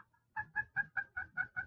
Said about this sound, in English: you get those crisp, clear sounds. If you do a little lighter, you get those softer little clucks. Maybe sound a little farther away.